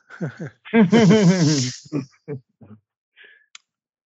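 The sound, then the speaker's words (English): A cat named Shadow hisses at a visiting neighbor cat, a harsh breathy hiss layered over a wavering, growling yowl, followed by a few shorter spitting bursts and faint clicks as it trails off. “My cat is freaking out.”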